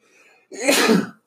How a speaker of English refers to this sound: I can sneeze